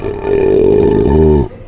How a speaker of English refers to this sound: plus our very signature belching sounds.